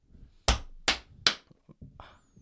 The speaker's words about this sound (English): That's not wacky clapping.